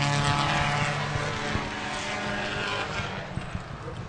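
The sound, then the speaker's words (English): A loud, buzzing rotary-engine race car drones steadily at a pace-lap speed, its harsh, raspy tone holding for about four seconds with slight pitch wavers and no talking. “Man, that rotary's so loud.”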